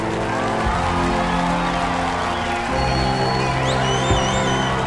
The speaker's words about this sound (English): Let's go for round applause.